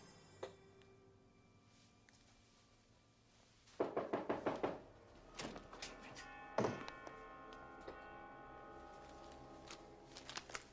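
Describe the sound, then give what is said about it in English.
Someone bangs on a door in a quick burst of about six loud knocks, followed by a few scattered single thuds over a low background hum, with no talking. “Like, now who's walking around banging on his door?”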